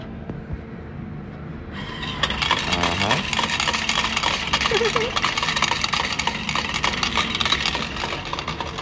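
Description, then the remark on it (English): A laundromat change machine, fed a bill, whirs, then a dense, continuous metallic clatter of coins or tokens pouring out and rattling into a tray, loud, lasting several seconds over a low mechanical hum. “Straightening out a nice bill and inserting it face up. Do not fold, for we need all those coins”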